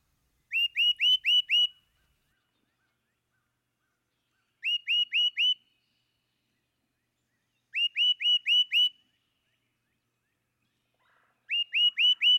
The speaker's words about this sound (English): Witness the clear, sweet whistle of the great crested titmouse.